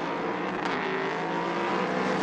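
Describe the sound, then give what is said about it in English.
Racing car engines roar steadily at high revs during a race in which a car chases a GT car ahead, a dense, loud mechanical drone that holds for a couple of seconds without pause. No one speaks. “Easier task for him now with just one GT car ahead of him rather than the battling pair.”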